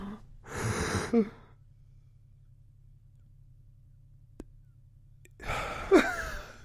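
A person demonstrates SAS-style controlled breathing: a forceful inhale-exhale, a long pause with a low background hum and a faint click, then another heavy, drawn-out breath.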